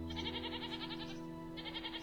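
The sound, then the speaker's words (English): Goats bleat in a pasture in two long, wavering calls separated by a short pause, fairly quiet, over a steady low hum with no one talking. “From high up in the apple tree, Almafi watched his brothers herd goats in the pasture.”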